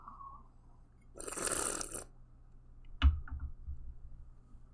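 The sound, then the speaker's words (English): A loud, airy slurp of about a second as wine is sipped with air drawn in, followed by a sharp wet click and faint swishing mouth sounds, with no talking. “When you swish wine around, you know, let me take a sip here.”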